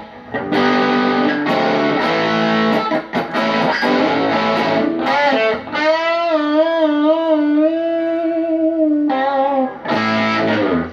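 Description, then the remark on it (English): A distorted electric guitar played through a Rat distortion pedal on its vintage mode riffs with gritty, saturated chords, then holds a long sustained note with wavering vibrato before returning to crunchy strumming, loud with no talking. “that was just on the vintage mode, so that's based on the original, like, big box rat”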